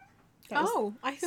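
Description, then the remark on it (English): A female cat meows twice, wanting her lunch: a drawn-out rising and falling meow followed quickly by a shorter one that is cut off at the end, with no talking over them. “I thought we'd done with the cat nugging today. No, this is the other one. She wants her lunch now.”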